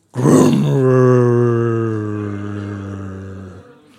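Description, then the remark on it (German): A voice imitates a Ferrari engine being started with a push button: a rough, sputtering burst gives way to a steady, low, buzzing drone held for about three seconds before cutting off. “Okay, komm, wir machen mal den Ferrari an.”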